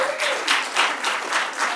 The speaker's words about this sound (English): So thank you so much. So give yourselves a round of applause for that.